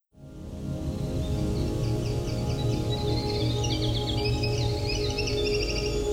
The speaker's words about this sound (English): The winter wren is a tiny but loud brown bird that, despite its name, is a summer songbird in the Bruce Peninsula. Not only is this bird disproportionately loud, but its bubbly, cascading songs are amongst the most lengthy,